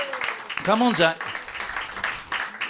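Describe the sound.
A crowd applauds a young man called down to the front after doing impressions, clapping steadily in a dense, crackling wash of applause for a few seconds, with a voice cheering loudly over it near the start.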